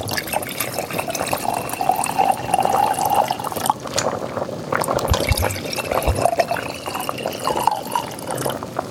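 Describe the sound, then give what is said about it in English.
Rosé wine pours into a glass in a steady, gurgling stream, its tone rising as the glass fills, then trailing off into a few softer splashes and trickles, with no one speaking. “Can I get you a glass of rosé?”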